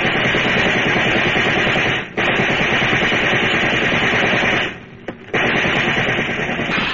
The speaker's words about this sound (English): Get down low, Babe. Those cops are using riot guns.